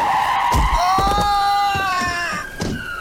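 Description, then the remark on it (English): An ambulance of the Hills Hoist Song Church skids with a loud, sustained high-pitched tire screech that wavers slightly in pitch, while several dull thumps land beneath it as it hits a person, before it fades. “Hills Hoist Song Church also use ambulances to drum up a few congregation members, even if that means hitting them first.”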